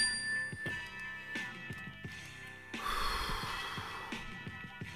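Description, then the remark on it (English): A mindfulness bell chime rings out with a steady, sustained tone that lingers throughout, while a group takes loud, deep breaths at the bell's cue, with soft shuffling sounds rising underneath it. “When you hear the bell, everybody just take a deep breath, okay?”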